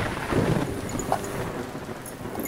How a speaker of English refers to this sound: Wow, it's really raining hard. Yeah, look at all that lighting.